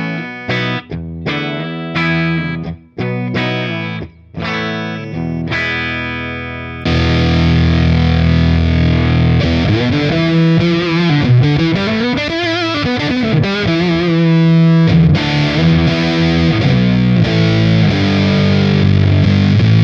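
An electric guitar played through an amp with a fairly clean tone: a few short, choppy stabs at first, then sustained ringing chords and a sliding bend, loud, with no talking.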